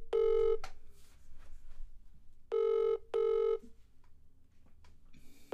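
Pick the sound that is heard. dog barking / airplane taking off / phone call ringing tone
phone call ringing tone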